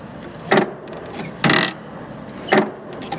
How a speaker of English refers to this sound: You look at it, the diorama, and there's no fandom in the picture. You turn the handle and he bursts through a door. So sure, we can get some wonderful sound effects of that happening.